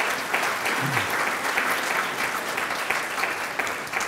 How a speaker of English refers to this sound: And please let us hear a round of applause for Dimebinstock.